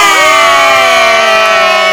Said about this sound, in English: Everybody clap for us. That's goals right there.